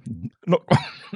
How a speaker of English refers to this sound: excuse me for coughing.